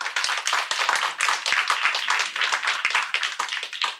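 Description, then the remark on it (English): A crowd claps steadily for several seconds, a dense, even patter of many hands with crisp individual claps poking through, fairly loud and without any voices. The audience is applauding to vote yes on whether millennials will be left behind. “So clap right now if you think, yes, millennials will be left behind.”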